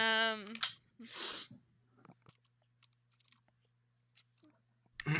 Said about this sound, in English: Shall we get the dice out? Yeah, that's a good idea.